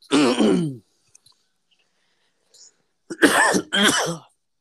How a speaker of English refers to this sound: I'm gonna try not to cough through the entire episode.